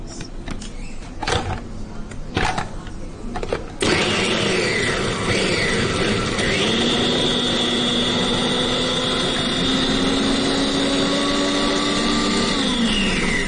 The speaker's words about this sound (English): Okay, so that's the chickpeas into the processor. And you can do this like on a normal food presses or a hand blender if you have one.